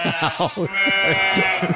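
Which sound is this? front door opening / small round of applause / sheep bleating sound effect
sheep bleating sound effect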